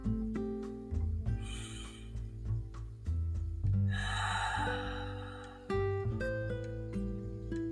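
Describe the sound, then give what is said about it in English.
A slow, deep breath drawn in and then let out, breathy, over steady sustained keyboard music with no talking. “Let's just take a breath and be so grateful for the breath that we're breathing right now at this moment.”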